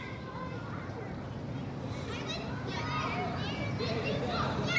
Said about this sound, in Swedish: Där nere ser man skrikande barn som gungar och leker.